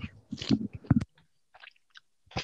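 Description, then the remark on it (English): Wet munching and biting into a peach: a few juicy chomps and smacking bursts clustered early, then softer squishy chewing and brief pauses before another bite near the end. “Munching. Getting into it with this peach.”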